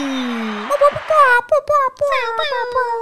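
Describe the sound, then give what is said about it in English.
A voice imitates a DJ Khaled-style air horn: a loud, sustained, buzzy tone with stacked harmonics, broken into a series of short, stuttering blasts that wobble slightly in pitch over about three seconds. “That was like my best air horn noise.”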